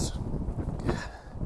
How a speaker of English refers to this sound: Sorry, guys. It's just where I live. It's just windy, and it is what it is. So I'm just trying to shield the wind a little bit.